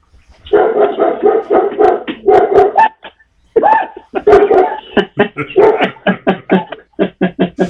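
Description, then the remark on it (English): A dog barks loudly, first in rapid excited flurries, then in a steady series of sharp, evenly spaced barks. No one is speaking. “When one of their dogs starts barking... The person at the other house, their dog starts barking as well.”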